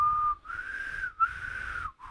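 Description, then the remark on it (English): A breathy, wavering whistle attempts a tune in a few short phrases, airy and uneven, with pitch sliding between notes and brief gaps for breath. No one speaks. “I'll give you my best shot at it.”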